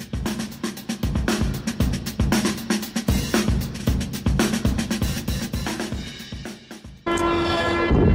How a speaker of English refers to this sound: as he rides a train across Europe